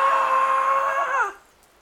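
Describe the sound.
A voice imitates Bart from The Simpsons waking up screaming in terror: one loud, sustained high-pitched shriek lasting just over a second, then breaking off with a quick downward slide in pitch.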